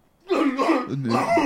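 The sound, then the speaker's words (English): A person imitates a harsh, rasping chronic cough, two throaty bursts in quick succession, fairly loud, with no other talking. “and start coughing.”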